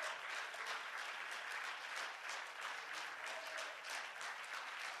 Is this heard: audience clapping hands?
yes